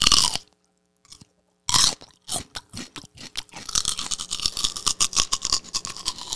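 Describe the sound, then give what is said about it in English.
Loud crunching of raw celery being chewed, a few sharp bites at first and then a rapid, wet, continuous munching with no talking. “Celery takes more calories to chew.”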